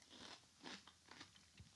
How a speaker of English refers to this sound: But I'm about to try some pickled watermelon. It almost has like a gummy consistency. Let's try this.